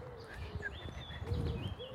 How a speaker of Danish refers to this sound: Går over broen til den lidt plørede jordsti nede ved søen. Her er der andre fugle, der synger. Kan du høre det?